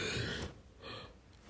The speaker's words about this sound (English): Sorry, I had to yawn.